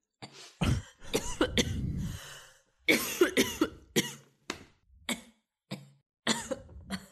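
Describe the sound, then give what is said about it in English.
A fit of repeated coughing after coffee went down the wrong way, fairly loud, coming in irregular bursts with short gaps between them and a few harsh throat-clearing hacks, with no talking. “I didn't realize this was this … coughing hour”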